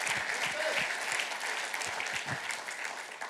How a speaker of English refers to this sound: Can we give the Lord a round of applause for that one?